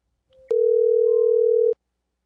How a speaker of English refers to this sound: Did you guys hear? Your stupid Chinese timer is done. I was going the entire time.